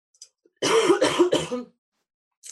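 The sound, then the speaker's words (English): Three quick, harsh coughs in a tight burst, fairly loud, followed by a short breath afterward; no talking. “Oh, sorry, you guys, I'm just going to cough for a sec.”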